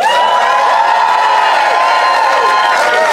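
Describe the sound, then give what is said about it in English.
A loud, continuous roar of the Phoenix audience applauding and cheering to cast a vote, with many voices whooping and shouting over dense clapping throughout, filling the whole space. “then applaud now”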